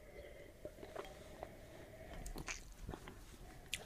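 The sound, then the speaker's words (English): Someone sips beer, with a handful of short, wet slurps and lip smacks scattered irregularly over a few quiet seconds, and no talking. “Okay, you moved on to the sip.”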